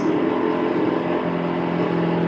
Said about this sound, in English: Sorry. Somebody's drilling something outside. Yeah, I know. We're getting a little bit of that. That's all right. No worries. He'll be done in a second.